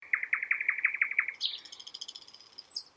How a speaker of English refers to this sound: Insert birds chirping.